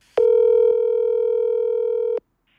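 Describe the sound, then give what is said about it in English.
A steady, loud electronic telephone tone from an old voicemail system holds one pitch for about two seconds, then cuts off abruptly, followed by near silence. “So here's the old way of doing it. Here's the old voicemail system, which you probably recognize.”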